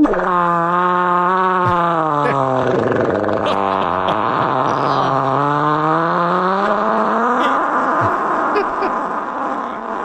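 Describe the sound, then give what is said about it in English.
A long, loud fart from a big man in an Enterprise Rent-A-Car polo shirt, lounging beside his girlfriend, sustaining for about ten seconds as a buzzy, brassy tone, its pitch wavering, dipping and rising again, with no talking over it. “And he lets out the most angelic fart I've ever heard in my entire life.”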